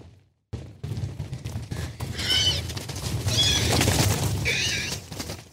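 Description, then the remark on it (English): A thundering stampede of hooves rumbles steadily, with three shrill, drawn-out squeals of a female horse in heat rising over the drumming at regular intervals. No one speaks. “But that noise, the squeal they make as they run by, is actually a female horse in heat.”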